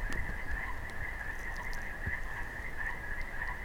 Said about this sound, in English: Bufo boreas, if I remember right. They have the white stripe down their back. And they totally disappear 8 or 9 months of the year. What we hear are entirely male toads.